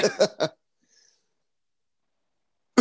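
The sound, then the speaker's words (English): Three quick coughs in a rapid burst, followed by a long quiet pause and then one more sharp cough right at the end. “I coughed for you.”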